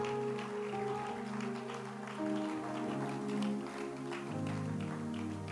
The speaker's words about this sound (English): Why don't you put your hands together for redeemed? Clap your hands. Clap your hands. Clap your hands.